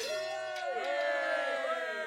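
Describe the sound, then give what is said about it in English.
A group of tenants lets out a loud, sustained cheer together as the remaining brigands lay down their weapons, overlapping shouts rising and sliding in pitch for a couple of seconds, energetic. “The tenantry, Burb, and Kazath give a big cheer as the remaining brigands all then down weapons.”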